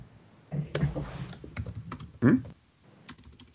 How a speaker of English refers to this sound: What's he doing? He's typing.